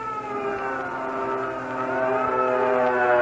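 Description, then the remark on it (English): An air raid siren sounds the red alert signal that enemy planes have been spotted, wailing steadily with a slowly shifting pitch, its loud, sustained tone swelling slightly toward the end, with no voices over it. “That signal red, the alert. That means we spotted the enemy planes coming over.”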